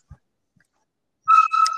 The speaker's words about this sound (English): Doggy, stop it.